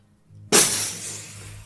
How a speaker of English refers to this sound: You smash once, twice, three times, and with a shattering of glass, you are pulled through.